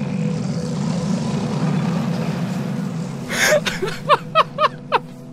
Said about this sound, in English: In pretty much any scene with a tornado, it makes this sound.